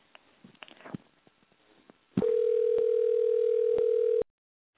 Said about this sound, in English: Just give me a second to dial her number. It's so weird to dial a phone number on a computer. I'm still not used to it. But it works every time. Now it's ringing.